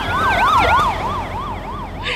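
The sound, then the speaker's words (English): An emergency vehicle siren wails in a fast, steady yelp, rising and falling several times a second, loud over a low rumble of road traffic. “But, no way to see the sirens.”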